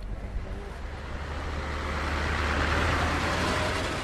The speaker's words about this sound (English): As the last residents of Migron leave, moving trucks arrive.